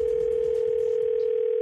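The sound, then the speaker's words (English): A steady telephone dial tone for a Super Bowl prank phone call hums at a single constant pitch for under two seconds, loud and unbroken, then cuts off abruptly; no voices are heard. “Super Bowl phone tap goes.”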